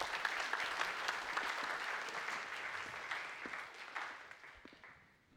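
Sustained audience applause, a dense crackle of many hands clapping at steady loudness before thinning out and fading in the last second. No one speaks over it.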